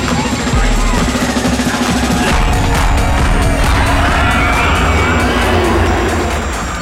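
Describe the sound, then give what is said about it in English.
A steady, dense roar of party crowd noise, shouts and cheering blurring together with a low engine-like rumble, holding loud throughout. “Sounds like a party.”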